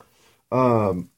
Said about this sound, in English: Hang on, pause. The rare yawn pause.